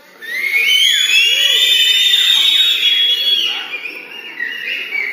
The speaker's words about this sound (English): So, everybody that can whistle, let's act on this verse. Whistle.